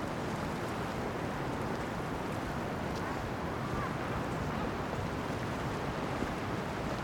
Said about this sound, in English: Oh, it's just such a good sound. The waves, you know.